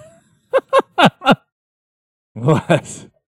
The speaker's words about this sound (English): What's wrong with you? Big yawn